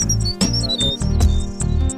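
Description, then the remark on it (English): High, thin bird chirps and short whistled tweets repeat over steady, thumping theme music, the calls light and partly blended into the music. “Bird noises.”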